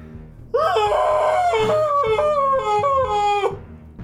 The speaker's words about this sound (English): Then you guys see, on initiative 1, at the end of the round, you hear a guttural, monstrous scream.